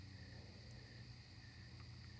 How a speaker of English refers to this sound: And the crickets, they gave me something to listen to.